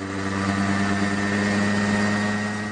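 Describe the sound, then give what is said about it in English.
A small engine drones steadily at a constant pitch, its buzzing hum layered with strong harmonic tones and no change in speed. It is the motor of a small remote-controlled helicopter armed with cameras, being tested by a Spanish firm in Murcia. No voices. “This is from a video of a Spanish firm in Murcia testing a small remote-controlled helicopter armed with an array of cameras, including one that uses infrared to film at night.”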